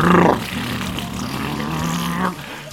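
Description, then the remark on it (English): A harsh, buzzing motorcycle engine revs loudly at the start of a song, its rough throttle note holding steady with slight rises before easing off near the end. “That is the most unpleasant sounding motorbike I hear.”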